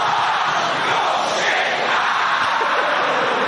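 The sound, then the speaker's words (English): A large stadium crowd of Leicester football fans roars and chants together at a goal kick in a loud, sustained, dense wall of voices that holds steady for several seconds with no clear breaks. “So if you couldn't make that out, they say the Leicester fans at every goal kick, they will go, your shit, right? That's what they would yell.”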